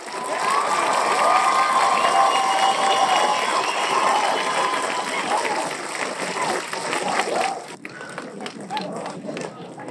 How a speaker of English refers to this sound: The crowd agrees. All the applause. The crowd completely agrees. That was spontaneous. I couldn't control it.